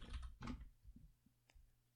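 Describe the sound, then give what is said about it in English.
A few irregular clacks on a computer keyboard, the first couple heavier and the later strokes lighter and spaced apart, over a faint low hum with no talking. “Guys, listen to the sound of my keyboard.”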